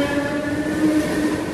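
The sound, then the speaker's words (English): A Dublin train carrying two boys rolls along its rails in August 1985: a steady rumble with a sustained tonal hum riding over it, continuous and even throughout, with no voices. “within a couple of days, these two boys, sitting on a Dublin train in August 1985, will become front page news.”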